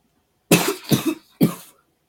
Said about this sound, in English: It is me again. Coughing.